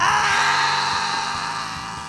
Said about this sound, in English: Inside was nothing but white, and the only thing that we could hear is the screaming of Pixie, Fauna, Rocky, and Lemur